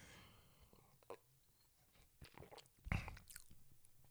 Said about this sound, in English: So M is in mouthfeel. So let me just take another sip again.